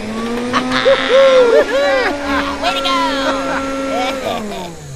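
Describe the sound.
An old vacuum cleaner runs with a steady, buzzing motor drone for about four seconds before shutting off, while a voice cheers over the noise.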